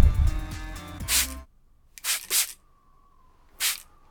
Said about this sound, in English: Watch what happens when I spray him with Foot Baron's patented all-purpose Wendigo repellent.